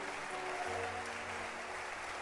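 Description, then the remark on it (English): An audience at a regular evening church service claps for Jesus steadily and continuously, a dense, even wash of many hands that holds at the same level throughout, with a faint low hum running underneath and no talking. “Keep clapping, don't stop.”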